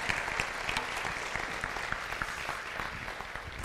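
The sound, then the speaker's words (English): A steady wash of applause for a worship team, many hands clapping in a dense, continuous patter at an even level for several seconds, with no voices standing out. “we give another round of applause for what God has done through the worship team”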